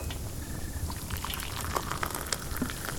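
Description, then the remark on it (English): Water for tea simmering close to a boil, with a steady low hiss and small bubbles popping irregularly, as tea leaves are added. No one speaks. “The light water seems to be nearing the right temperature. Shall we add the leaves?”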